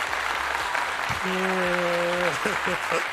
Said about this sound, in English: Applause.